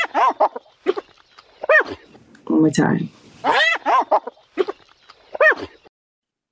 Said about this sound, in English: Oh, is it a hyena? I hear it. I hear the laugh.